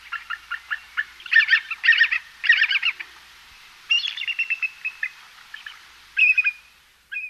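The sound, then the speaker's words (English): A bald eagle calls with thin, high-pitched piping notes, starting as quick separate chirps and then breaking into fast chattering bursts, clear with no voices. “And here is our avian national emblem, the bald eagle.”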